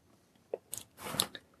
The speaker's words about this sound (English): You hear some crunching of gravel.